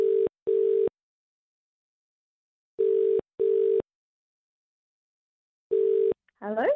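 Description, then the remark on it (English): A telephone ringback tone of an outgoing call plays in paired bursts, two short rings repeating with long pauses between, loud; after the third burst a voice answers. “It's making some weird beeping noise in my ear.”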